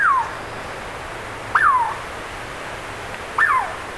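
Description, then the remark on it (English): A Douglas squirrel, a small chestnut-red squirrel, gives three sharp, bird-like calls, each a quick whistle sliding downward in pitch, spaced about two seconds apart, clear against a quiet background with no talking. “Actually, we're hearing a Douglas squirrel, a pint-sized chestnut red native of forests from the Sierra Nevadas of California northward to coastal British Columbia and southeast Alaska.”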